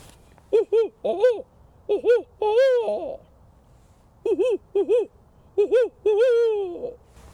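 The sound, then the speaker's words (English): A person imitates a barn owl call with two loud bursts of short rising-and-falling vocal hoots, each series ending in a longer, wavering drawn-out cry, separated by a brief pause. “you want to hear my barn owl call?”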